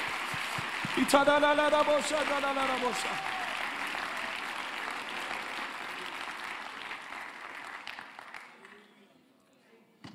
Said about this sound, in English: Let's give the Lord a hand clap of praise for what we're feeling here.